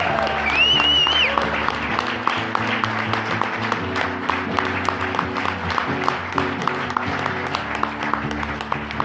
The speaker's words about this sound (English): A big round of applause for Mr.